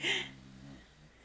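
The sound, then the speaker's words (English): An old hound dog snores once, faintly: a breathy rasp followed by a low, buzzing rumble that fades out after about a second. No one talks. “And the dog's snoring.”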